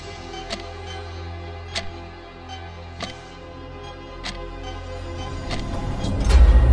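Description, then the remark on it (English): A clock, the Doomsday Clock, ticks slowly and steadily, one sharp click every second or so, over a low background hum that grows louder toward the end. “Doomsday Clock.”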